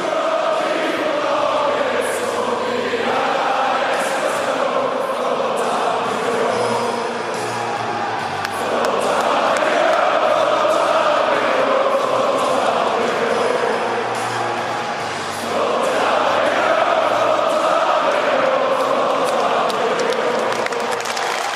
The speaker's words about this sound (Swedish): Utan de åkte in, ställde sig runt mittcirkeln och så spelade man hymnen samtidigt som publiken sjöng med i den. Så det var liksom ett lite annorlunda sätt att starta matchen på.